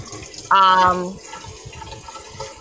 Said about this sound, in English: No. I was just pouring some water to drink. Yes. I realized it and turned it off. No, because I feel like I was yelling over the water, like, and then.